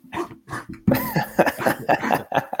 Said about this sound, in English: Excuse me. Can't make me laugh out here because I'm bad on a cough. Sorry.